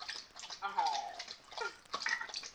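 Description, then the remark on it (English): A pet lapping up drinking water, a quick run of wet, splashy laps with small drips in between, loud. “Hold on, Simba's drinking water.”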